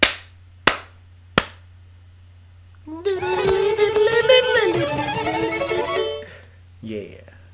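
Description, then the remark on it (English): Three sharp hand slaps ring out in an even, quick rhythm, loud, followed after a pause by a voice making a long, wavering fiddle-like tone. “It was like three slaps and like a fiddle.”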